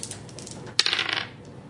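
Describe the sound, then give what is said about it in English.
A short burst of bright clattering as dice are rolled, hard little objects tumbling and rattling against a surface for about half a second before settling, fairly quiet, with no voices. “Alright, roll the dice.”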